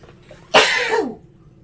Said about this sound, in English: I sneezed.